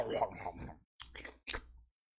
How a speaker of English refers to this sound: I hate that slurping sound that he does.